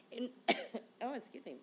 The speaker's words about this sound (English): As I'm, like, coughing and dying here.